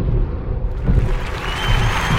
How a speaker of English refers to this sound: Yay, there's a clap button on here. Hold on, let me see if I can do it. Where's my clap button? Right, let's try this.